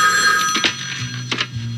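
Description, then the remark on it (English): A telephone bell rings loudly, a continuous metallic trill with a couple of sharper bursts, heard on its own with no talking; it is the phone of the Twin Peaks Sheriff Station. “I do not know how you got this phone number, but it's reserved for official sheriff's business only.”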